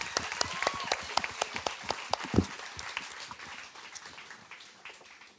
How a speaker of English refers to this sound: So a big round of applause for Jess.